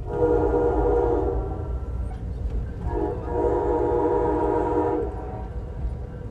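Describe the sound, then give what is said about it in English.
A passenger train running along the coastline rumbles steadily along the tracks with dense low-frequency roar, sounding two long, loud horn blasts separated by a brief pause. “That built environment threatened by rising seas includes oceanfront homes, roads, piers, power plants, and this very train I'm riding on.”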